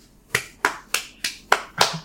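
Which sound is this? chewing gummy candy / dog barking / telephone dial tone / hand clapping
hand clapping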